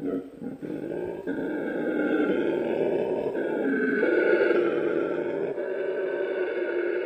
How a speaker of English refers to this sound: It's really strange, isn't it? It's like a cross between a lion and a frog or something. I mean, it really is amazing. They sound like it's a much bigger animal. That was actually the sound of a 7-kilo howler monkey.